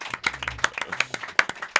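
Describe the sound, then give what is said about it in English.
A short burst of audience applause for Texas, the psychic horse, many hands clapping at once in a dense, crackling patter that holds steady for a couple of seconds at moderate loudness. “Ladies and gentlemen, let's have a round of applause to Texas, the psychic horse.”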